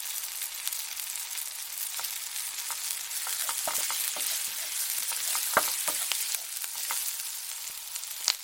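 A steady sizzle of bacon frying in a hot pan, with scattered sharp pops and crackles breaking through the hiss. No voices.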